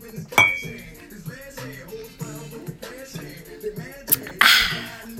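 A bright glass clink rings out near the start as glasses are clinked in a toast, followed later by another sharp clatter and a brief noisy burst, all over a busy background of music and murmuring.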